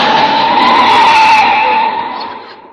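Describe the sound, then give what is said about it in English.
A loud, sustained tire squeal as a car tears away hard, a shrill, steady screech that holds for about two seconds and then trails off. No voices are heard. “Please, sir, jam your foot down on the gas pedal.”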